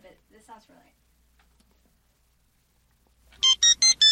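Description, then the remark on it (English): A person speaks briefly, then after a pause a loud electronic phone ringtone starts, playing four quick, evenly spaced bright melodic bursts with no talking over it. “Yeah, Tony Soprano's ringtone. That's it.”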